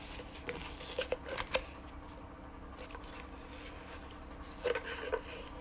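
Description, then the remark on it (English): Quiet rustling and crinkling of paper with a toilet paper roll, broken by a few short bursts of crisp taps and scrapes, over a low steady background hum. “I'm just playing with toilet paper.”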